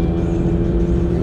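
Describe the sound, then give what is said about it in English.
A car engine revs loudly, a steady, throaty low-pitched roar that holds for a moment without any voices, as the driver revs while driving on a road with another car trying to pass from behind. “Bitch, I'll rev my fucking car up for you.”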